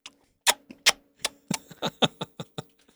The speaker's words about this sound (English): Starts typing on the computer, grabs his mouse, moving around the thing.